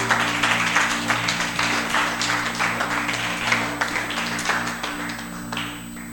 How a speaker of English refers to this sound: Don't worry, the rice is ready. Let's clap for the rice.